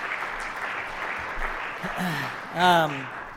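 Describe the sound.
An audience gives another round of applause to a woman who has just led a prayer, a steady, dense clatter of clapping, and near the end a voice lets out a loud, rising whoop over the applause.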